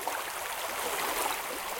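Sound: running water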